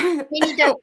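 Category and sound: human body sound, cough and throat clearing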